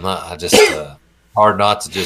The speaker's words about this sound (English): Goodness. Bless you. And sneeze came out of nowhere.